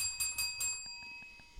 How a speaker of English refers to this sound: You might want to ring it right now. Yeah, exactly. I'm going to attack the whole time. You think the bell will stop me? A little bell? You need a fucking air horn.